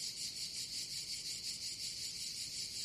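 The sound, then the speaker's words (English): Cicadas drone outside a dilapidated trailer in a steady, high-pitched buzz that pulses softly and never lets up, filling the outdoor air at moderate volume with no voices present. “I remember the sound of the cicadas outside.”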